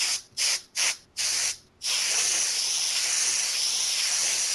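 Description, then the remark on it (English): Compressed air sprays in four quick, sharp bursts while cleaning grime from a keyboard, then a long, steady hiss that fades slightly at the end. The bright, airy spray sounds alone, with no voices. “Just cleaning my keyboard.”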